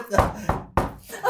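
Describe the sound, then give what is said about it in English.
Several sharp, fairly loud knocks as a person raps on wood, in an uneven rhythm of three or four raps within about a second, with a voice faintly present underneath. “That's me knocking wood.”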